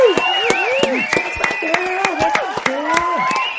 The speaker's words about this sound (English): how she wants to bring in a fleet of Priuses, Prii, as our Latin teacher has told us, who is in favor of this? By a round of applause. Woo!